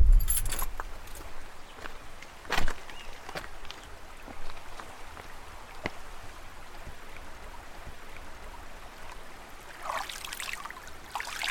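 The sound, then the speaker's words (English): A low, steady wash of the low-running Chehalis River at a bridge on Highway 6 in Washington, with scattered clicks and light metallic jingles near the start and a brief rushing swell near the end, like a passing vehicle. “Just before I get back to PL, I park near a bridge on Highway 6 that crosses over the Chehalis River.”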